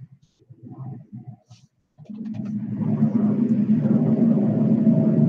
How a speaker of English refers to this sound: Do you guys hear those planes when they go by? A little.